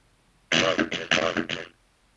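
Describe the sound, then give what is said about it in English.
A loud cough burst lasting just over a second, broken into several choppy pulses with a buzzy, metallic, digitally garbled tone, followed by quiet. “you had a robot cough there.”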